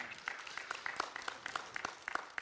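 A crowd applauds steadily, many hands clapping together in a dense, continuous patter at moderate volume, with no one speaking over it.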